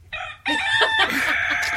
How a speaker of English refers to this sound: No, the cockerel.